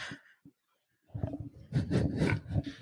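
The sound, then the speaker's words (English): Someone clears their throat: a couple of short breathy bursts, a pause, then a loud, gravelly, guttural rasp that rumbles on for over a second with no talking. “Sorry, I had to clear my throat a little bit here.”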